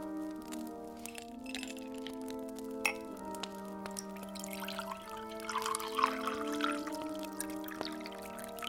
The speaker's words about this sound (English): Pour me a drink first while I sit down. Absolutely. Scotch and soda? Hold the soda and make it a double.